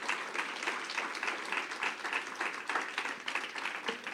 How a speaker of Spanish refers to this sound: Ah, dele un aplauso al Señor, hermano, si Él se lo merece.